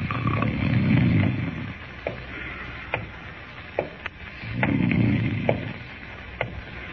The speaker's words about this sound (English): I'll try snoring again.